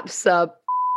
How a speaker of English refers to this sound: So we can edit that. Beep out that bit.